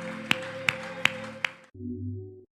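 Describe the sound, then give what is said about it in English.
An audience claps in unison in praise during a church service, four sharp, steady claps over sustained music, which then drops to a lower, fuller tone after the claps end. “Would you clap your hands and give him praise?”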